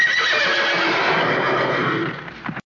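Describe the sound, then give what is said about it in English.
Horses neigh loudly and shrilly when the name Frau Blücher is said, their whinnies overlapping for about two and a half seconds before cutting off abruptly into silence. “There was a long running thought, now it is incorrect, that the reason that the horses cry every time she says her name or someone does say her name is that people thought that Blücher meant glue, either in German or Yiddish.”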